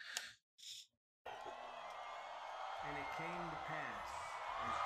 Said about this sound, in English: This is the crowd getting into it.